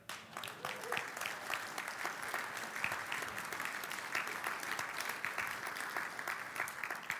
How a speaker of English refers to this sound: Oh, you clap. Now I want to see you celebrate, right?